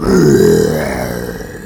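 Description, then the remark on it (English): A man imitates a lion's roar with one loud, low, growling bellow that swells quickly, then slowly trails off over nearly two seconds. “And go ahead and do a lion roar right now,”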